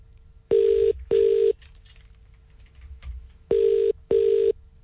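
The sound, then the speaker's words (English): After a phone is dialed, a telephone ringing tone sounds in two double bursts, each pair of steady buzzy tones separated by a pause of quiet background hiss, clear and fairly loud with no one speaking. “So I'm gonna dial the phone now.”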